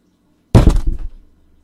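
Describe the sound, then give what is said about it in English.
A sudden loud thump and clatter as cats knock an object over, with a short rattling tail that dies away within a second. No voices or meowing are audible. “Sorry for the bang there. Cats are being dicks.”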